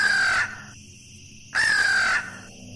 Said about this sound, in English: The blood-chilling croak of a crow made me jump. It had been watching me, stalking me with its glowing yellow eyes as though I were its prey.